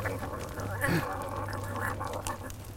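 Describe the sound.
A voice imitates a big cat's growl: one short, rough, throaty burst near the start, followed by a low steady hum with soft breathy noise.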